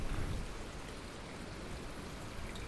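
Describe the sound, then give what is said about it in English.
Steady, continuous splashing of running water from a garden water feature beneath a tree, with an even, unbroken wash of sound and no voices. “Reached the point now where we're at the water feature.”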